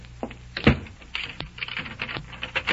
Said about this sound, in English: I'm sorry, but I'll have to lock your door.